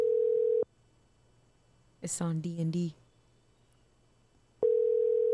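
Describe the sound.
A telephone ringback tone on an outgoing call to a rapper of a band: a steady, mid-pitched electronic tone sounds, stops for a long pause, then returns. A person briefly speaks during the silent gap.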